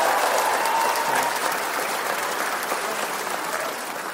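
An audience claps in response to being asked to clap if they have kids. The clapping is a steady, dense, even patter of many hands for about four seconds that holds its loudness, then eases off slightly at the end. A faint whistle rings briefly near the start.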